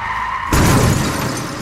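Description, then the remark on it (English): A car's tires screech briefly, then a sudden loud crash as the car hits a pedestrian walking across the road, rumbling on with a harsh, noisy tail. No voices. “I still can't remember when the car hit me.”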